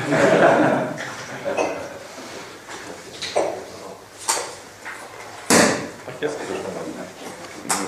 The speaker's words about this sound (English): That is the sound of the cork. Recognizable around the world without language translations.